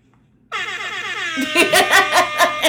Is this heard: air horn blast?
yes